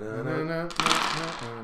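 A steady tonal hum plays, then dice rattle and clatter in a bright, noisy burst for about half a second before the tone continues alone.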